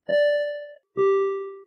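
A personal-record bell rings out for a runner's personal record in the Green Bay Packers 5K, in two loud chimes, a higher note followed by a lower one, each struck sharply and left to ring for most of a second, with no talking.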